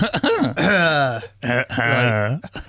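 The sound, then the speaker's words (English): A loud throat clearing comes in two drawn-out, voiced bursts, a rough guttural cough-like sound with a short pause between them and no speech. “Not Maybe with a we cough”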